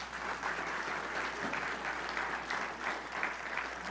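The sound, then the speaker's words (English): A church audience claps together for the Lord during a morning service, a dense, steady patter of many hands that holds at an even level for several seconds with no voices over it. “Give the Lord a clap this morning.”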